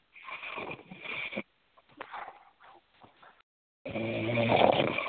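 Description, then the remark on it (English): Snoring heard over a muffled, narrow-band phone chat line: a few rough, breathy inhales and exhales, with short gaps between and a louder, throaty snore at the end. No one speaks. “There's got this fat nigger on the chat line snoring.”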